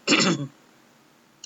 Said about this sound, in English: Oh, all this air conditioning has got my throat kind of stuffed, or a little cough in my throat.